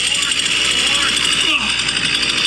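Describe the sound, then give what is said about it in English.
A man fires up a chainsaw while balancing it on his chin; the engine runs loud, a steady buzzing two-stroke drone with a brief shift in pitch partway through, continuing without pause. “There he goes, turning on the, firing up the chainsaw.”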